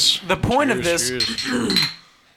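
household object, beer glasses clinking

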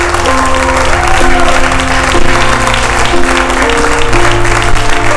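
crowd, audience applauding

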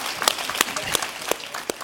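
crowd, audience applause

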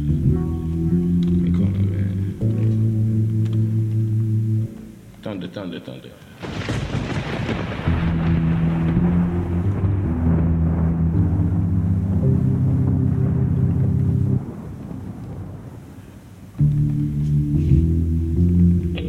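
nature, thunder rumbling

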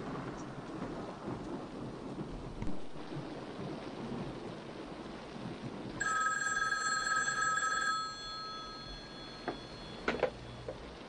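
household object, telephone ringing

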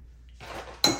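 food or drink, chewing ice

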